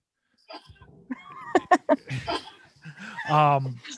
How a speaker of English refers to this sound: Do you hear that? It's my dog coughing.